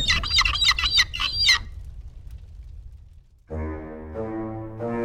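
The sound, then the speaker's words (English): A blackbird on the ground in the wreckage of an old bar gives a quick burst of sharp, chattering calls. After a quiet pause, a low, steady droning tone like a horn takes over. “Mick notices a sexy blackbird on the ground in the wreckage of his old bar.”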